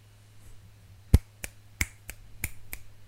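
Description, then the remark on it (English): Sharp finger snaps and hand slaps done along to a song, three slaps and a bunch of snaps: about six crisp cracks in a loose rhythm, the first hitting hardest, over a faint steady low hum with no talking. “I'm just going like three slaps and a bunch of snaps.”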